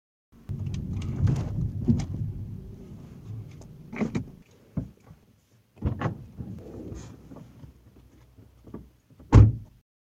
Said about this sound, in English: But wait, don't go. There is more after the sound of the door shutting.